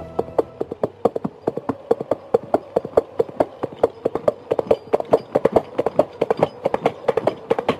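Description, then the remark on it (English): Hollow coconut shells knocked together in a steady, brisk clip-clop rhythm, closely mimicking trotting horse hooves, as in Monty Python and the Holy Grail. The sharp knocks repeat evenly throughout, fairly loud, with no talking. “In Monty Python and the Holy Grail, the coconuts create an illusion of a horse that is not actually there.”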